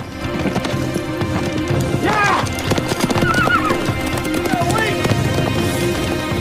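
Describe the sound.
Horse hooves clip-clop steadily while a horse neighs several times in rising, wavering whinnies over a busy background with faint voices.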